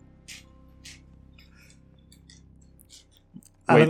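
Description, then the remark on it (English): Small hard dice clatter and click in short bursts over a low background murmur as a player rummages for another die, ending with a louder rattling tumble as a die is rolled for a constitution saving throw. “Yeah, I'm looking for another one because the last ones have been rolling poorly.”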